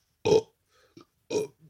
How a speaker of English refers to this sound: Sorry, just burping up over here and crap.